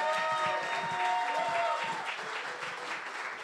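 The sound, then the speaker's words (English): An audience at a storytelling event claps steadily in a dense, sustained round of applause for the first storyteller, with some cheering or whistling tones on top, at a fairly even level before easing slightly. “Okay, give a big round of applause to the first storyteller.”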